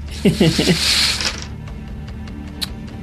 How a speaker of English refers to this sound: Wits plus awareness. Here we go. Here we go. This is good because I got a four dice roll finally because got some wits.